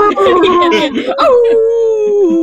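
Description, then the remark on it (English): A voice imitates dogs howling in a backyard: a loud, sustained howl that wavers and slides slowly downward, opening with rougher, breathy vocal bursts. “The dogs are also now cringing. There's a howl started in the backyard.”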